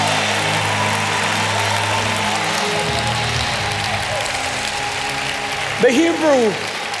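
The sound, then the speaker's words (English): An audience in worship claps hands in a dense, steady roar of applause, answering a call to clap, that holds for several seconds over a low droning hum, with a brief raised voice cutting through near the end. “Clap your hand like you need a clear vision for your life.”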